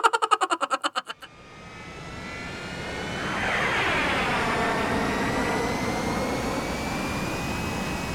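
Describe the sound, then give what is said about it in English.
A rapid pulsing tone for about a second gives way to the steady, loud roar of airplane engines droning in flight over the mid-Atlantic, with a whining pitch that swells and holds; three engines have been lost and the fourth is about to go. “We've lost three engines and the fourth's about to go.”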